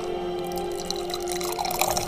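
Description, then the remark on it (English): A drink is poured close to the microphone, a steady stream of liquid splashing and trickling with bright, bubbly detail for a couple of seconds, with no voices. “Pour it right next to this.”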